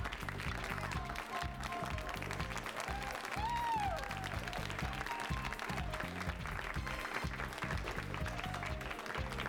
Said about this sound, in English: You just clap the whole time?